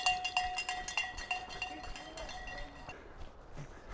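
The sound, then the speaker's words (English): A handheld bell is rung rapidly and repeatedly, its bright metallic clanging tone ringing steadily for about three seconds before stopping, with soft footfalls and faint background noise underneath. “There we go. Great bell ringer.”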